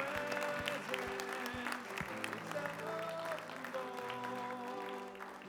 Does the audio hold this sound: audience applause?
yes